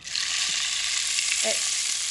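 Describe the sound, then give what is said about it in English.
A rain stick, used in a classroom to gain the class's attention, pours out a steady, continuous rush of fine pattering, like light rain or sizzling, holding an even level throughout with no talking. “I have a rain stick in my classroom that I use to gain attention when we're talking on the mat.”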